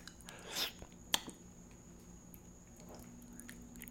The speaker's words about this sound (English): No, bro. I don't want to hear this chewing shit. I fucking hate that, bro.